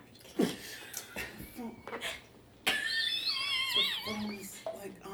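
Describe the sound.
Someone blows raspberry-style mouth fart noises: a short low sputter, then a longer squeaky buzz that wobbles in pitch before trailing off, with a few breathy vocal sounds around it.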